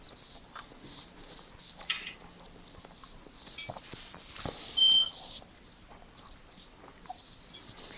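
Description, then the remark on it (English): A single short, high-pitched chirp from a smoke alarm's low-battery warning sounds once midway, fairly quiet, amid faint background clatter and rustling. “No, mine's going off because it's demanding new batteries, but right now is not a good time for me to be changing them.”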